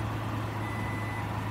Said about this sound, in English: At which point, you see one of the garage doors opening and a truck moving out. Moving out? Moving out.